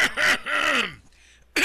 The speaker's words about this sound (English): Sorry about that. I over dramatized it, but yeah, I did need to cough. It's either that or choke to death.